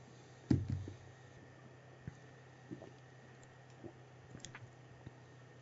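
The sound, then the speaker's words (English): A short slurping sip of carbonated beer from a glass, followed by faint wet clicks and small mouth sounds against an otherwise quiet background. “but I want to take a sip before I really swirl it around too much.”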